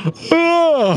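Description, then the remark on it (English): A single loud voiced yawn, a drawn-out vocal moan that holds steady and then sags downward in pitch at the end, performed by a human voice as a door-handle creature with an ear and a mouth. “And you see the yawn just go.”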